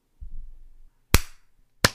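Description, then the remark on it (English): A soft low thump and rumble, then a sharp, loud hand clap, followed about a second later by a second crisp clap. Both are bright, instant snaps that die away quickly. No voices. “Let's clap on the 15-second mark.”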